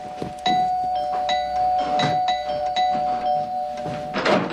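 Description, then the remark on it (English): A doorbell rings with a bright, sustained chime tone, struck several times in quick succession, with a few dull thumps mixed in. It sounds fairly loud, and no one speaks. “The doorbell.”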